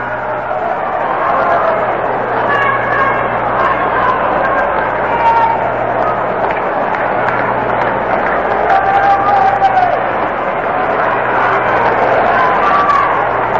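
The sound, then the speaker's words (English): Steady crowd ambience fills a large baseball stadium at a Yankees game in the ninth inning on a date night and ladies' night, a broad wash of overlapping voices and murmuring chatter with occasional louder shouts rising from the mass, constant and fairly loud throughout. “Yankees trying to excite a date night and ladies' night crowd here at the stadium with a comeback in the ninth.”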